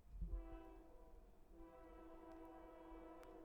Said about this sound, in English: One last train for the road is going to honk. Was that it? There we go. Might be the last train ever heard on THC.